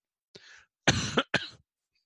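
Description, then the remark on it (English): A person coughs: a short, breathy throat sound followed by two louder, harsher coughs in quick succession, then silence. No talking. “Sorry about that cough.”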